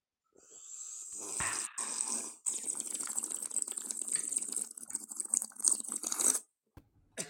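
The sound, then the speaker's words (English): A long, loud, airy slurp of coffee, drawn out over several seconds with a couple of quick breaks, then cut off abruptly. No one talks during it. “And join us in this sip of cafecito.”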